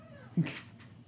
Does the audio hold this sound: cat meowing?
yes